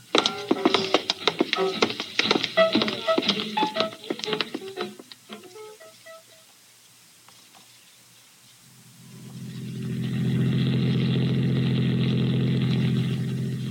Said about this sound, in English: Get the car started.